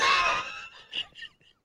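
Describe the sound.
A loud, strained voiced cough trails off, followed by two or three short, quieter cough bursts spaced a few tenths of a second apart.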